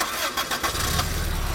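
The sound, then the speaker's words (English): A car engine is started with a key: it cranks briefly with a scratchy whirring, then catches and settles into a steady low rumble, fairly loud, with no voices. “Never started a car with a key before.”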